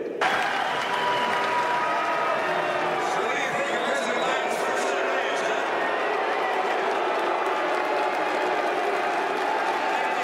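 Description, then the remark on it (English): A large crowd of delegates at the Utah Republican Party state convention at the Maverick Center loudly boos Senator Mitt Romney in a steady, unbroken roar of jeering voices that lasts the whole stretch, with some clapping and shouting mixed into the din. “Here at the Utah Republican Party state convention, Senator Mitt Romney was loudly booed by delegates.”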